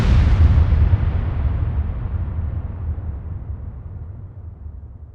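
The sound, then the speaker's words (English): A single loud gunshot booms out at night, heard by a man trying to fall back asleep, followed by a deep rumbling echo that slowly fades away over several seconds. No one speaks. “So he goes and tries to fall back asleep, and then he hears another gunshot.”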